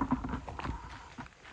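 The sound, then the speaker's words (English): Flip-flops slap against wet ground in a quick, uneven series of soft, smacking steps, with a steady hiss of rain underneath. “I should not be wearing flip-flops.”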